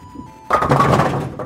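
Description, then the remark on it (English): A bowling ball strikes pins at Lawn Lanes, a bowling alley used as a polling place on the southwest side of Chicago: after a brief quiet hum the pins crash in a sudden loud clatter, the rattling tumble sustaining for about a second before it fades. “About 750 voters can knock down some pins and cast their vote at Lawn Lanes on the southwest side of Chicago.”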